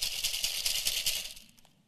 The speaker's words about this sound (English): I have a bowl of pretzels right here. This is really tricky. I'm going to shake this bowl of pretzels, and then I just want you to see what happens. Okay?